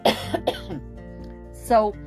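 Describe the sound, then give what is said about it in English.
A few sharp coughs in quick succession, followed after a short pause by a rougher, voiced cough from the throat. The coughs stand alone, with no talking. “It's just me coughing, like right now.”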